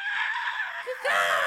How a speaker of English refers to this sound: The article states, it's a scene you've probably seen countless times in movies and on TV. An eagle flies overhead and emits a rough, piercing scream, kind of like